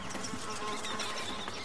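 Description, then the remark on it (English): A steady, dense hum of mosquitoes buzzing all around in the jungles of Vietnam, continuous and fairly soft, with no voices over it. “And in the jungles of Vietnam, where Tim was fighting, mosquitoes were everywhere.”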